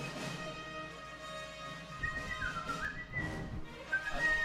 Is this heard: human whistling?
yes